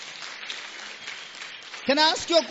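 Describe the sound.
An audience claps in a steady, dense patter at moderate loudness for about two seconds, then a man's voice starts speaking over the fading applause.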